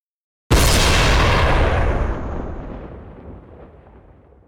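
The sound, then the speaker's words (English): A single loud rifle shot, fired by a traveler on a camel at Kokserek, bursts out of silence with a thunderclap-like boom, followed by a long, rumbling decay that fades gradually over several seconds. No one speaks. “A sound like a thunder clap rang out, and a kind of steel wasp beat Kokserek, causing him such piercing pain that he yelped from the pain for the first time.”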